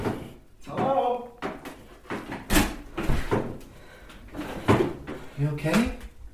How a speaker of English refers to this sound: Yeah, the wind just must have caught the door and it made me jump. Sorry. I don't know what made that door slam. Maybe it was the wind, but when I heard the noise and I turned around, I could swear there was someone there.